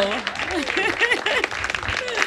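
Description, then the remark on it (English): An audience applauds a band as it is brought onto a stage, a steady, dense wash of clapping, with voices cheering and calling out over it throughout the brief stretch. “Awesome, keep it going for them.”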